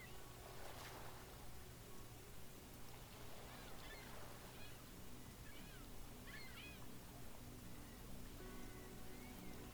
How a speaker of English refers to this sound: And the gentle sound of the surf somewhere nearby.